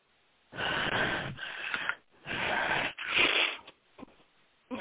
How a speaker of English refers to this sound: Good. Nice breathing.